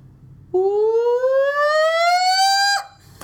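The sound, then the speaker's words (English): A person lets out a loud, sustained Bigfoot-style call: a single rising, siren-like wail lasting about two seconds that climbs steadily in pitch before breaking off, with no talking. “So do a Bigfoot call, and I promise I'll do one after you do one.”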